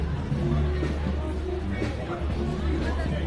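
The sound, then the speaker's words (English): Steady crowd chatter from a big crowd at the 39 West outdoor block party, with Green, Phoenix and Cranston Street completely closed: a dense babble of many overlapping voices with no single speaker standing out, holding at an even, moderate level throughout. “Folks, 39 West crowd in the block party.”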